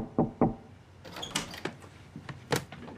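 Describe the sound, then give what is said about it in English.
Two quick, firm knocks on a closed door, followed by softer clicking and shuffling sounds like a handle turning and the door moving. No one speaks. “So, just a gentle reminder about closed doors.”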